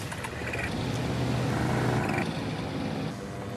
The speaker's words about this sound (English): I mean, look at the tools that they're using. This thing, it's not exactly a fighter jet. It's some sort of paraglider with a giant fan.